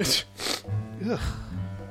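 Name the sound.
sneeze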